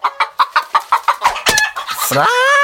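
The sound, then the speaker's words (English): A chicken clucks in a quick, steady series of about eight sharp clucks, then breaks into a loud, drawn-out squawk that rises and holds. Clear, no talking. “I think he killed a chicken in that one.”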